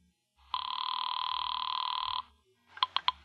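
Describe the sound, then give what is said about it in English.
A telephone bell rings, one long rattling trill followed after a pause by three quick, sharp rings, with no voices. “Now, take the phone. Tell him. It's ringing.”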